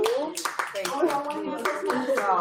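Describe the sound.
A small group claps in scattered, uneven bursts while several people keep talking over it, the sharp hand slaps mixing with the chatter at a steady moderate level.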